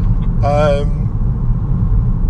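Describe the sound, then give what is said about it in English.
Cars speeding through a tunnel create a loud, constant low roar of rushing traffic. A short, wavering, tonal wail briefly rises above the rumble near the start. “As cars go ridiculously fast down a tunnel.”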